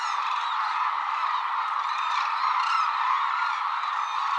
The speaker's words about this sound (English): Most of the world's hooded cranes winter at one reserve on Japan's southern island of Kyushu, calling together around sunset. Few birds' voices can evoke the spirit of the wild like the voices of cranes.